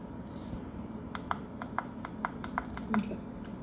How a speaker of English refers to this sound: What are you clicking on?